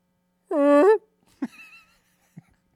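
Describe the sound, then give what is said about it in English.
A voice makes a buzzy, drawn-out half-second raspberry imitating a fart, followed by a brief squeaky vocal burst and a faint short blip, with near-silence in between. “My dad's farts sound like that.”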